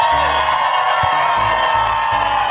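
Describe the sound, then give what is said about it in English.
A large crowd cheers and whoops loudly and continuously at 8:30 a.m. on the final Friday of 2023, a dense wall of shouting voices with scattered yells rising above the steady roar. “Can we just look at this insane crowd right now as we round out the year? Let me hear you guys one more time.”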